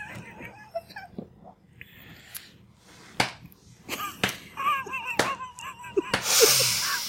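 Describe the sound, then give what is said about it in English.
Several sharp slapping smacks land at irregular intervals, each a crisp, loud crack like spanking, with faint whimpering or laugh-like vocal sounds drifting between the hits. “Sounds like you're spanking.”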